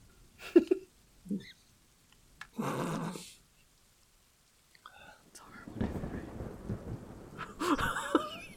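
Steady rain hisses and rumbles in bursts, swelling into a heavier, continuous downpour toward the end, with a few low thunder-like surges and faint murmuring underneath.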